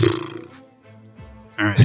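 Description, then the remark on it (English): A voice imitates a fart with the mouth, a loud, low, buzzing blurt that trails into a quieter rumble before another burst of raspy noise. “I'm going to get Punch, our producer, to save that fart noise you just made with your mouth.”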